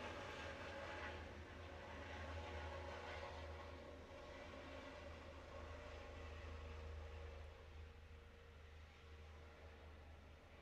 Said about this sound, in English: And now let's just listen to the chopper here, as it moves away.